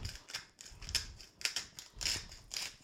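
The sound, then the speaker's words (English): A hand-cranked grinder grinds sea salt onto diced sweet potato cubes in a bowl, twisting in quick bursts with a gritty crunching rasp in about six uneven strokes with brief gaps between them. There is no talking. “And then grind some sea salt into them.”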